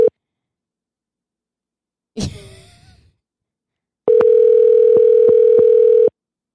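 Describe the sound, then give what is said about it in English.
An outgoing call's ringback tone sounds in a steady electronic hum: a brief tail at the start, a long pause with a short breathy rustle, then a loud two-second ring with faint clicks. “And you guys can hear the phone ringing.”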